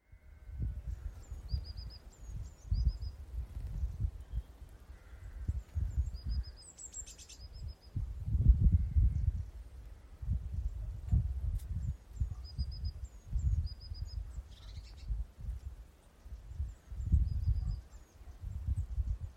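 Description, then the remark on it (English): A bird calls repeatedly outdoors, short high chirps recurring in small bursts throughout, fairly faint against a steady low rumble of wind or handling noise. “Some kind of bird. There's this kind of bird. I don't know what kind.”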